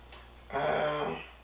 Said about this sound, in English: I just burped too, it's gonna smell crazy.